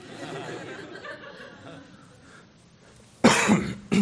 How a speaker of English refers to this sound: I went the wrong way. I coughed into the mic.